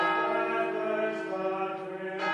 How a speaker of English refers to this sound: All schools use bells to mark the rhythm of the day, but in Cistercian College, as well as the school bell, they have the prayer bell from the monastery next door.